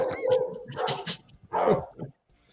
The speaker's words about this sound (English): Well, even your dogs are excited. Yes, my dog is thrilled.